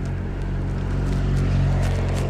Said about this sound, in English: Holy shit, we just got passed by a motorcycle and I'm on a bicycle.